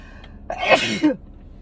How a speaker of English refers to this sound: That was just a sneeze. It's not, not sick.